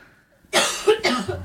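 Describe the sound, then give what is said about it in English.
A woman has a loud fit of harsh coughing, two or three rough bursts in quick succession after a moment of quiet. “Oh, that cough.”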